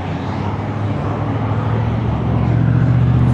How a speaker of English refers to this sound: So much traffic.